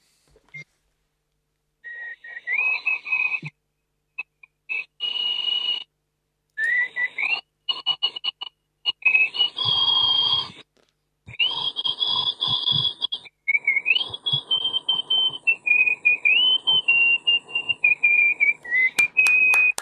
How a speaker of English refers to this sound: Ladies and gentlemen, the world's loudest nose whistler